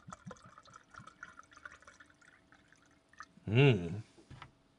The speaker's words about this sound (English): But let's pop this rum open. You can tell it's quality because it has a nice little cork with like some wax here on the top. Here comes the best sound in the world. Oh. So let's pour a few fingers of that.